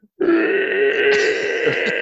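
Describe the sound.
A voice imitates the long screech of a ship's hull dragging as the ship is first taken out: one sustained, strained, grinding vocal drone that holds steady and loud for about two seconds, harsh and buzzy with a brightening edge near the end.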